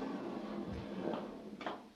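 A heavy dungeon door grinds open as someone comes in, with a couple of scraping, clunking bursts over a low rumbling background, moderately loud, with no voices.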